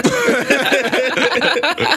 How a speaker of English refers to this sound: I'll just clear my throat.